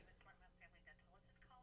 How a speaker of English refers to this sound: Colin is getting a phone call from Family Dental.